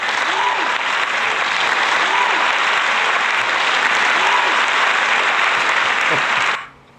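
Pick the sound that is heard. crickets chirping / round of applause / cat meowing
round of applause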